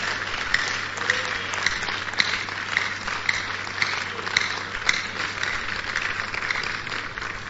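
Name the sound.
audience clapping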